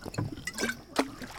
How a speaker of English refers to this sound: How do you live on an island and not have an outboard? Because I like to row. I used to go out fishing with my dad in this thing, before his accident. Rowing connects you with the water.